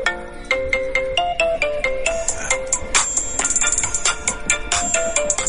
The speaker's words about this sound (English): That is for real my ringtone.